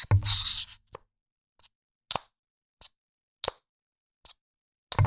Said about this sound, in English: Other than I do really like that sound that the MagSafe makes as it connects to the back of the phone. That there is something delightful about that.